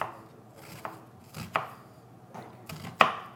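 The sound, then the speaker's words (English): A knife chops on a cutting board, dicing an onion into a tight dice a little smaller than medium: a handful of sharp, uneven knocks with softer taps between them, the last stroke loudest, with no talking. “He's going for a nice tight dice here.”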